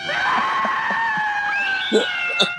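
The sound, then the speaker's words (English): A severed head screams in a horror film: a long, piercing scream holds a high, wavering pitch for over two seconds, loud and unbroken, with a couple of sharper bursts near the end. “That just severed head screams, and it's very scary.”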